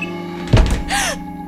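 A door slams once with a heavy, low thud, followed by a short hissing rush with a brief squealing tone that rises and falls. No one speaks.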